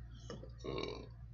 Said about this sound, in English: Sorry about the burps.